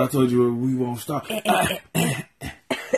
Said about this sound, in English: It's harder than just me coughing.